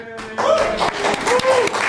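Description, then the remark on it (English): An audience bursts into applause after a brief quiet start, a dense, steady wash of clapping with a few voices whooping and cheering over it, applauding UC Irvine being ranked the coolest school in the nation for energy efficiency. “Definitely worthy of applause.”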